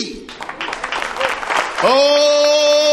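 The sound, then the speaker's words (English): An audience claps in a dense, steady patter for nearly two seconds, then the clapping gives way to a sustained, even pitched tone that holds loudly to the end. “Oh, don't clap yet.”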